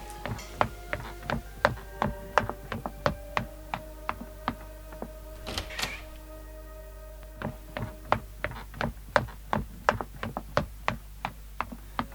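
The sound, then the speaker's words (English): A long run of sharp, steady knocks on a door, fairly loud, repeating at a brisk even pace for several seconds over a faint steady hum. “Oh, just a second. Someone's at my door.”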